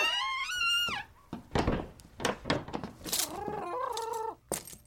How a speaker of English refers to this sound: The turkeys are not sedated. What? They're awake and angry, very angry.